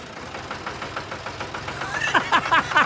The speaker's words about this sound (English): Have we got a tractor in the house? Here it is.